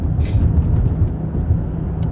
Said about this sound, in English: Oh no, we're hitting the brakes. Oh, we're pumping the brakes already. I don't want to pump the brakes.